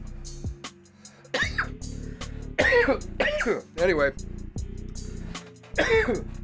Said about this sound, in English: He said as he continued to cough.